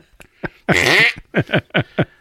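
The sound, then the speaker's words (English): Someone blows mouth-made fart noises: a long, loud, sputtering raspberry followed by a quick rhythmic run of four short, punchy blurts. “I owe you like 30. 5 fart noises.”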